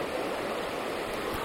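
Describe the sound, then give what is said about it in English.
The Credit River rushes beside a seated person in a steady, dense roar of churning water, loud and unbroken, with no voices present. “I've got the levels down because I'm sitting next to a really loud river.”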